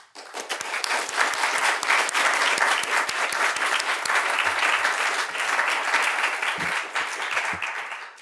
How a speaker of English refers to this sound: So to begin with, I would like to thank our generous donors who make Mises University possible. So please join me in a round of applause.